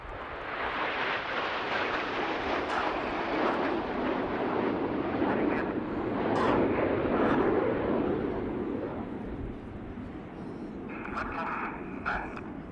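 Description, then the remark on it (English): Aerobatic display jets roar past in a loud, broad rushing wash that swells to a peak midway and slowly eases off, with faint voices underneath. “Red's just coming back, a past, fly past here.”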